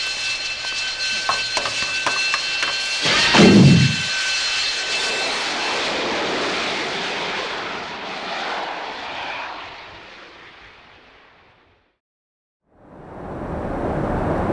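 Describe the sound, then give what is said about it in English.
A loud, steady airplane engine drone of a plane flying from Fairchild AFB to Lackland AFB fills the air with a broad roar and a brief surge, then cuts out into a moment of silence before the engine roar returns. “Tango Foxtrot 701, on course and steady for flight plan out of Fairchild AFB to Lackland AFB.”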